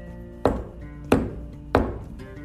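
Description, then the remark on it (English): Three solid knocks on a tree trunk, evenly spaced about two-thirds of a second apart, fairly loud against a quiet background with no talking. “And the unicorn walked over to the tree and did three knocks.”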